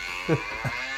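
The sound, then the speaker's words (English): A human voice makes two short, low, falling moo-like calls in quick succession, imitating a cow, over a steady background hiss. “Oh, my cow. My cow.”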